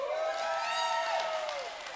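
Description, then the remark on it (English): An audience claps steadily for about two seconds, a dense wash of applause with a sustained cheer or whoop rising above it, fairly loud throughout. “That's not the time to clap.”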